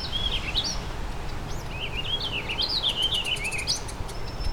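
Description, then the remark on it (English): Songs of two warbling vireos, rambling, slurred phrases in two bursts, with a Tennessee warbler's quick, high repeated notes overlapping near the end, set against a steady low outdoor rumble. “It's like two warbling vireos and the Tennessee warbler.”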